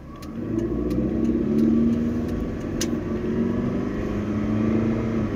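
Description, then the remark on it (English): A bus engine drones steadily, a low humming growl with road roar that stays loud and even for several seconds as it travels along the A422, a fast 70 mph road near Milton Keynes, on a cold, sunny, windless day. “Oh, a miracle! A bus.”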